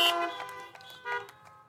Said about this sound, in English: If you've heard that statement, honk your horns, flash your lights.